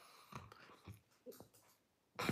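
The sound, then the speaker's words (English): A deep breath drawn in, a loud rushing inhale at the very end after a stretch of quiet, faint murmurs and soft noises. “So folks, the first thing is when you wake up in the morning throughout the day, stop, take a breath.”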